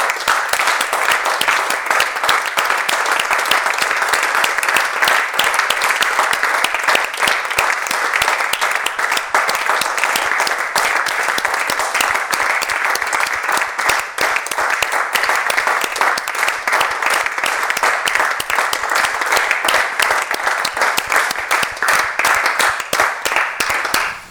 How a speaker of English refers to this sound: We're clapping.